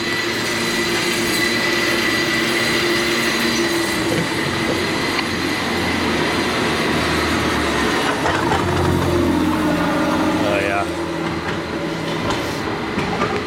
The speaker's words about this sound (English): San Francisco, that is your cable car. Now that sounds like the sounds of the waves lapping on a Polynesian beach.